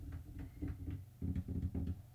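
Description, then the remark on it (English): Fingertips tap rapidly on a glass desk in a guest room, a steady run of soft, dull knocks, about a dozen, growing slightly louder and heavier in the second half, with no voices. “Here's just me kind of like tapping my fingers on the glass desk.”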